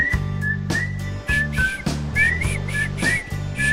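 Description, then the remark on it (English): A bright whistled tune with short rising and falling notes plays over music, with steady low bass tones and regular percussive hits keeping the beat. “I can't whistle.”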